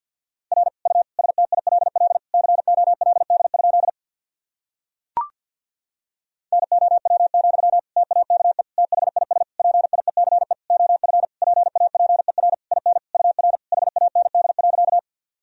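Fast Morse code at about 50 words per minute, sending practice sentences made from the top 400 words and abbreviations: a steady mid-pitched tone keyed into rapid dots and dashes, with a pause and a brief click midway before the beeping resumes.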